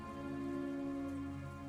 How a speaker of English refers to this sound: As you pass, you mostly do so in silence, the faint rain and mist pooling along the edges of the trail amidst the boughs of the trees that weep softly with droplets of moisture falling onto the path below.